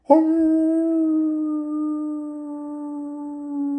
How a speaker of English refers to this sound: And as they walked along, there was this fog that came in and it crept in and made it kind of eerie. and they heard this howling noise like a werewolf.